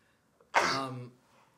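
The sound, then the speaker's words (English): A single loud sneeze: a brief intake of breath, then a sharp, breathy burst that trails into a voiced tail and ends after about half a second. “God bless you.”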